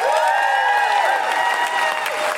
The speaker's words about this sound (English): And before I bring them on, can I have a huge round of applause for our incredible guest today, Rosie Holt?